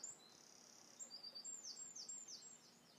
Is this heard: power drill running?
no